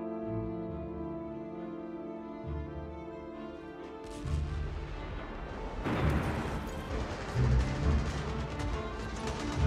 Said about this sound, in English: On the morning of April 12, 1945, the prisoners at Colditz heard distant gunfire. They knew it was the advancing American army.